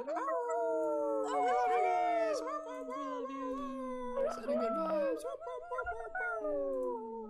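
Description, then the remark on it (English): Several people in an online broadcast unmute their microphones and howl together like wolves, their long, wavering voices overlapping in a loud, sustained chorus that rises and falls for several seconds. “So for everybody here, go ahead, gently unmute your microphones in the next second and join me in doing some like wolf howls and send some love to all the people who are tuned into this broadcast.”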